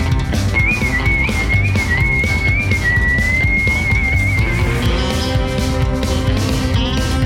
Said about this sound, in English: All right, this is catchy. I'm getting some like line dance vibes. Maybe that's just the country girl in me. Whistle along. Okay, I can't whistle like that.